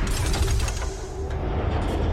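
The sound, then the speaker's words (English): A vault door opening sound effect, played after a combination is punched into the Vault keypad: a heavy, continuous mechanical rumble with deep booming low end and a faint steady hum, loud throughout, with no voices. “Sounds like it's opening”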